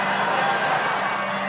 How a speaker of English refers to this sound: Friends, he is risen. He is risen. And this is where you got your bells. Hallelujah.